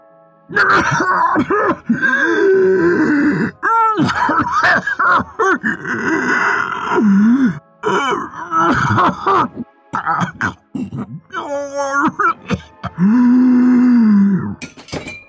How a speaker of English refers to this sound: But his face started to rapidly change color, and he could not get the rest of the sentence out. His coughs and gasps grew louder.